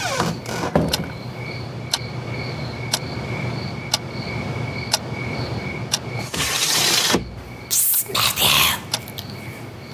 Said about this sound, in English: I'm going to be quiet with the door, okay?